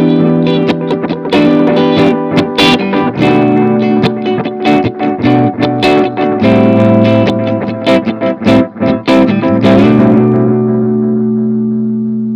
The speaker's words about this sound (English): It's almost at the point where it's feedbacking. Yes, I was about to say that. Yeah, you can almost hear it at the very end, like. You can hear it start to. It's almost going to oscillate.